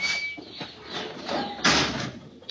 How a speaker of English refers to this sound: Oh, yeah, gotta shove that door hard. Sticks a little.